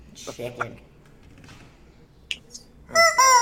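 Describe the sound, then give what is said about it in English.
A loud squawking from a toy party chicken bursts in at the end, shrill and wavering, after brief voices and faint clicks earlier on. “Chicken. Toby's got one. What? Yeah, party chicken.”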